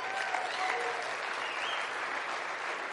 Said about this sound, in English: Clap your hands, oh ye people.